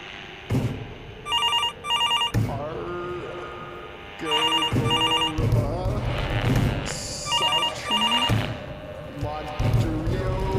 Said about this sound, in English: Anything happening with the phone still? Yeah, it's so all of the phones on the wall are ringing.